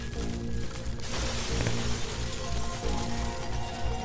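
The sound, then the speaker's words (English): A chunk of popcorn ceiling crashes down about a second in, shattering on the floor, followed by a sustained hiss of falling, scattering debris over a low, steady rumbling drone. No voices. “A chunk of popcorn ceiling rained down around us, shattering on the floor.”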